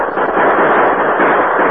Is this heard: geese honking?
no